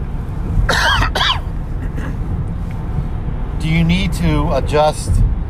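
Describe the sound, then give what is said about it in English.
A person coughs twice in quick bursts, then clears their throat a few times after a short pause, over a steady low rumble of background noise. “Excuse me while I cough.”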